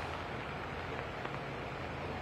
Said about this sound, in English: Something we don't need is any more heavy rain that's coming down now this evening right across Troublesome Creek, so aptly named because yesterday morning the water got up to where the top of my head is.